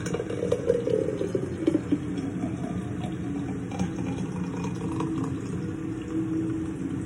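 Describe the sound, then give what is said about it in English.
A thick blended smoothie is poured steadily into a cup by a mother, a continuous gurgling, sloshing pour lasting several seconds with slight surges in flow and no talking. “Mom's gonna pour it.”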